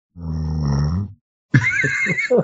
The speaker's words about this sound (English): Was that a snore? Oh, that it is. A snore. I knew it was coming.